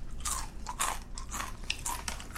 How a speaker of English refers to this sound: Oh, I'm talking while you're chewing. I'm sorry. I just ruined it. We could try again. 2 minutes of silent talkie eating. Okay. You're, like, suppressing your chews.